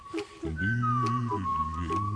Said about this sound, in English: She sounds pretty good. Is she whistling or is she doing that deep voice? She's a pretty good whistler, I guess.